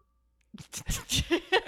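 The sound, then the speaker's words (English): A candle being blown out while softly whistling: a few breathy puffs of air, with a soft, wavering whistle slipping through the last bursts. No one speaks. “You know, that was me blowing out the candle, but like softly whistling too.”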